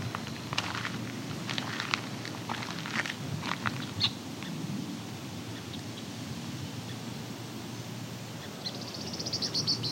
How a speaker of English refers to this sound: That was a eastern meadowlark.